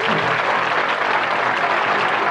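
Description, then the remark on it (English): Steady applause from a group of people for a 13-year-old's 93 in biology, dense and even throughout, a continuous patter of many hands clapping at once with no pauses and no talking over it. “Can we get a clap for that? Get a clap for that.”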